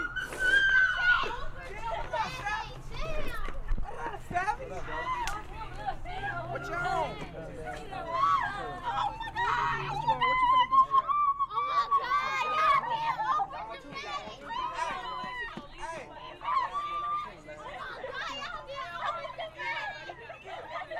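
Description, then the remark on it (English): Two teenage girls scream loudly and excitedly, long high-pitched shrieks rising over a dense, continuous clamor of voices and chatter that carries on for the whole stretch. “Yes, those are two high school girls, both screaming at the top of their lungs.”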